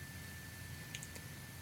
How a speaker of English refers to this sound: And with this third chime, let the frequencies come into your cells, opening them, cleansing them, and preparing them for the frequencies of serenity.